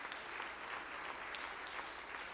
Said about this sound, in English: Oh, clap your hands again to the Lord in Jesus' name.